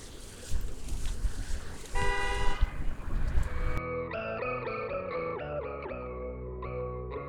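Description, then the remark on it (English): Traffic noise rumbles before a car horn blares in a sustained honk at the people recording, followed by a string of short horn tones shifting in pitch, loud. “Now for the only time that we were honked at in the entire 3-4 hours.”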